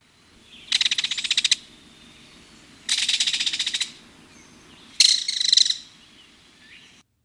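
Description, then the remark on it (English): Three loud, dry rattling bursts from a belted kingfisher, each a rapid string of clicking notes lasting about a second, separated by short pauses, clear with no talking. “First is belted kingfisher.”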